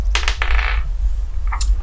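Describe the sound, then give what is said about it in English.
Dice rolled for initiative in a tabletop game clatter and tumble across a hard tabletop in a quick burst of bright rattling, then settle, followed by a few small clicks over a low steady hum. “All right, so let's roll initiative.”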